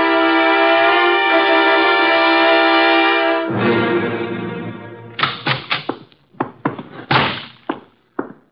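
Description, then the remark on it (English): A steady, held musical chord gives way to a flurry of loud wooden bangs, several doors slamming shut in quick, uneven succession, with no voices. “you know I dislike the banging of doors.”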